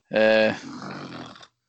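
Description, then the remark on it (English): Odin, a dog, snores: a loud, tonal groaning snort breaks into a longer, raspy, breathy rattle that fades slightly before cutting off, a single snore cycle with a brief catch at the end. “Odin's snoring.”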